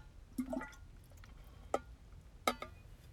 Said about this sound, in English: I'm going to take a sip of it right now.